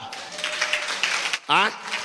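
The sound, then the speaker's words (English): A crowd claps together in a dense, steady patter of applause for over a second, then a loud voice cries out briefly over the tail of the clapping. “Clap.”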